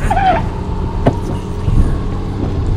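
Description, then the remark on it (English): A car roars along, its engine rumbling steadily throughout, with a short high-pitched squeal at the very start as its brakes fail to work. “It does appear that my brakes are not working.”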